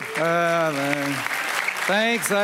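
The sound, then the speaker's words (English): Audience applause, a steady dense clatter of clapping throughout, with a voice calling out in long sustained tones over it twice. “So now if you don't clap at the end, I'm gonna think like, oh, that was terrible, so way to go.”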